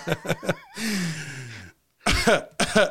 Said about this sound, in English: Oh, do you hear that cough?